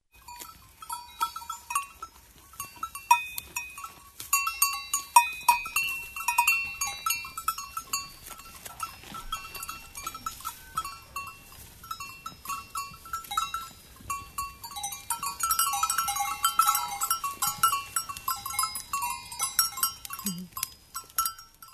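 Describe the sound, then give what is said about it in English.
Goats graze in Switzerland, their cowbells clanking and jingling irregularly throughout, with occasional bleats mixed in. The bells grow busier and brighter toward the end; no one speaks. “Well, that was the sounds of goats in Switzerland. Goats grazing. Goats eating.”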